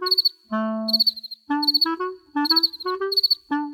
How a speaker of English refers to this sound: Crickets are cold-blooded animals. Most cold-blooded animals get sleepy when it's cold outside, and crickets do too. And because they're sleepy, they sing slower.